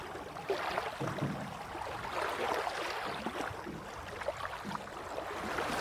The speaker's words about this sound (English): Just throwing little pebbles into the water.